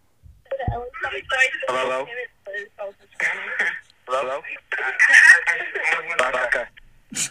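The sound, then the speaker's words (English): Thin, band-limited voices come through a phone line from two callers in the same place, talking in overlapping bursts with a slightly doubled, echoing quality, fairly loud, with brief pauses between phrases. “They're at the same place. Because they're echoing it.”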